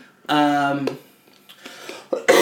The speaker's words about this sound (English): First, second, I'm going to cough again.